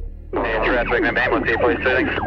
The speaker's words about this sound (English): News of casualties on Hoddle Street reached police. They were fast converging on the area with sirens wailing, blue and red lights flashing.